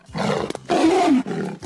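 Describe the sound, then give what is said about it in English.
A loud, deep animal roar sounds in several rough, sustained bursts with short breaks, the middle burst the strongest and most drawn out. No one speaks. “Yeah, that's fuck a fucking roar.”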